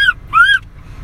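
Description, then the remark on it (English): Two shrill, seagull-like screeches in a song played loud in a car sound out over a low background rumble: a short cry, then a longer one that rises and falls before cutting off. “Why is there a seagull in my car? Sound like a fucking pterodactyl head ass.”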